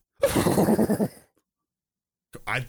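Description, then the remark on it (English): A person's voice mimics a horse whinny, a loud, wavering call of about a second with a rapid shaky trill, followed by a pause and a brief second vocal sound. “You did the, you did a horse coming.”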